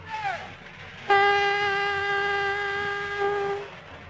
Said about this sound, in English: Can you see anything from the forest? Nothing but fog, sir. Jet, throw that horn again.